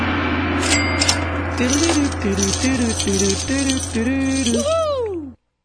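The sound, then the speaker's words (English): A deck of cards being shuffled, a steady papery riffling and rattling that runs for several seconds while someone hums a stepping little tune over it, ending on a falling glide. “You shuffle this so I can grab anyone.”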